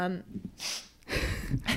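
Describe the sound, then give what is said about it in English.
A brief hum of voice, then several short, airy sniffs through the nose caused by allergies, uneven and moderately loud, with a hissy breathy quality between them. “I'm really sniffling now because my allergies are just sneezed.”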